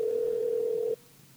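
A single steady phone ringback tone hums for about a second, clear and even, then cuts off abruptly into quiet line hiss as a phone call is placed to someone. No one speaks.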